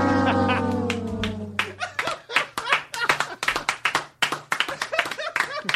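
A sustained musical tone opens, then a small audience breaks into brisk, irregular clapping that runs loud and steady to the end, with a faint low hum underneath.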